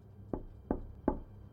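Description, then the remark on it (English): Three firm knocks on a door, evenly spaced about a third of a second apart, with only a low background hum and no voices: a sleeping-car conductor on a train knocking on Ratchett's compartment door in the corridor. “The conductor tapped a second time.”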